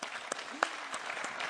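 An audience applauding: a steady, dense wash of many hands clapping, with a few sharper individual claps standing out. The applause is moderately quiet and continues throughout without any voices.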